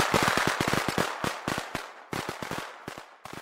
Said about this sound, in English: Wow, fireworks.